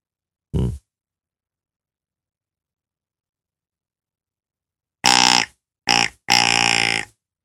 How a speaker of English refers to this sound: I couldn't hear you under the siren.